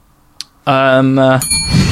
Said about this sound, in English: big fat use of the bell there. What is going on?